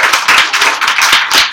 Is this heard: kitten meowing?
no